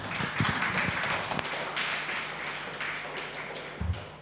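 Audience applause at the start of an evening event, a steady wash of many hands clapping with a few sharper claps standing out early on, holding at an even level for about four seconds before easing slightly.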